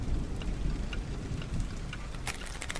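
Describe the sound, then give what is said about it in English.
Steady rain pours down in a storm, a dense hiss over a deep, continuous rumble, with sharper drip and splash sounds scattered throughout. No one speaks. “Who makes deliveries in the middle of a storm?”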